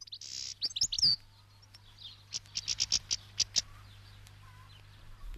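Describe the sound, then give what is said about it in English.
A siskin chirps in quick, high-pitched bursts, first a few twittery calls, then a rhythmic series of sharp tweets, against a low steady hum. “It's siskin. They're called siskins.”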